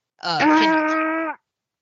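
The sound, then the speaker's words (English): A person vocally imitates an air horn with one sustained, steady, buzzy tone lasting about a second, harmonically rich and loud, with no other sounds around it. “Because your sounds more like a foghorn.”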